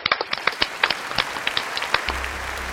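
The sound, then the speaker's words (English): An audience applauds to thank a panel at the end of a morning session, a dense patter of many hands clapping, steady and moderately loud, with no voices over it, and a low hum entering near the end. “Would you please thank our wonderful panel this morning”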